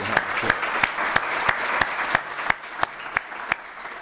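An audience breaks into a steady round of applause, a dense wash of clapping with one crisp, evenly paced clap cutting through about three times a second.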